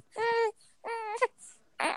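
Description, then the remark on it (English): A baby boy cries in two short, high-pitched wailing bursts with a brief pause between them, followed by a sharp breathy gasp at the end. “Wait, he sounds so cute when he cries.”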